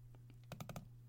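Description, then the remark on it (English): Computer mouse clicking: three soft clicks, then a quick burst of four sharper, louder clicks, all over a steady low electrical hum. “I had the mute on because I didn't want to hear the clicking.”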